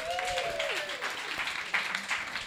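An audience applauds steadily to welcome a guest, a dense wash of many hands clapping at once, with a brief whoop rising above it near the start.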